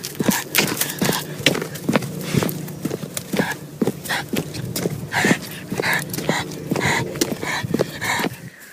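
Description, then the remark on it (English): An excited five-month-old border collie pants rapidly while its claws tap and click irregularly on a hard floor, a steady patter of sharp little ticks running throughout. “I thought I'd try and get some sound recordings of him because he's quite excited and panting and stuff.”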